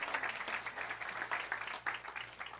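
A crowd applauds steadily, many hands clapping in a dense, continuous patter at moderate loudness, with no voices rising above it.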